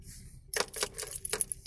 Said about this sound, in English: He didn't wake up until he heard keys jingling in a lock, and then a door opened and closed.